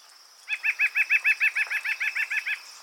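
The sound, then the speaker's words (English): A nuthatch gives a rapid, even series of about fifteen nasal, laughing notes over two seconds, clear with no talking. “Their call is often described as sounding like a laugh or a giggle.”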